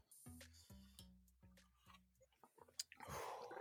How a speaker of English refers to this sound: Oh, don't you hate it when you accidentally double gulp? Oh, yeah. That's the fucking worst. I just double gulped right now. I had no chaser today, so.